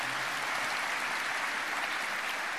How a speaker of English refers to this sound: Y'all come on, clap your hands and say amen.